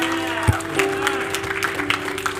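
A church audience claps, shouts and cheers in praise to God in a dense, steady wash of applause with scattered voices calling out, while a sustained low keyboard note holds underneath.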